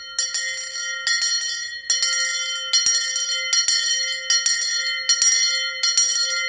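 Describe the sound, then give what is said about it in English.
A bright, high-pitched bell rings loudly and repeatedly, about eight strikes at a quick steady pace, each ring blending into a continuous shimmering tone with no voices. “So I texted a friend and said, hey, if I go before you, and you're there when you plant me in that earth, that's where I want to be, what's left of me, ring a bell.”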